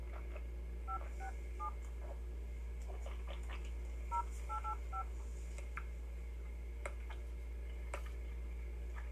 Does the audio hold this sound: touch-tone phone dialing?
yes